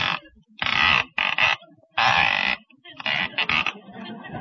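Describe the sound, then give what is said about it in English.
A rotary telephone dial is turned several times as someone makes calls, each spin a harsh, raspy ratcheting burst lasting under a second, separated by short pauses. “Certainly a noisy dial in there, ain't it?”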